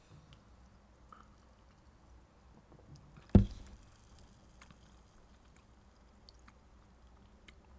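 A very carbonated drink fizzes quietly, a steady crackle of tiny popping bubbles, interrupted once partway through by a single brief, louder sound before the soft fizz carries on. No one speaks.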